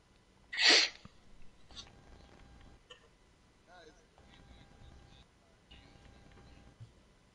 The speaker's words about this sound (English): Because sometimes I sneeze and I don't want to get that on the podcast.